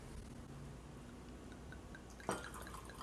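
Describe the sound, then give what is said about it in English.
After a stretch of low, quiet room hum, wine splashes briefly into a glass near the end as the glass is filled after a sample has been tasted, a quick liquid rush with a faint glassy ring. No one speaks. “And then the wine is actually filled”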